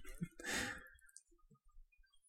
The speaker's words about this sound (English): I want to know what the deep breathing is.